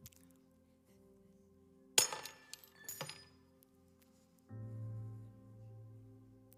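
Glass smashes with a sharp, bright crash, followed by tinkling shards and a second smaller crash a moment later, then a low, steady hum takes over.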